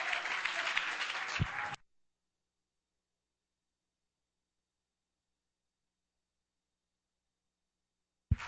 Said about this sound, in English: If that's you tonight, clap your hands and give him some praise in this house tonight.